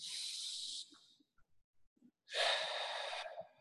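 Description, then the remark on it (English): A deep, airy breath drawn in as a self-regulation breathing exercise, a short pause, then a long, louder exhale rushing out, with no talking. “Just taking 10 deep breaths, close your eyes, or you can open your eyes if you are driving”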